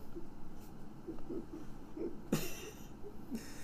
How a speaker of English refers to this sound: Because I coughed in the mic and have a terrible cold.